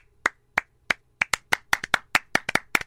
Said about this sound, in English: That was actually me applauding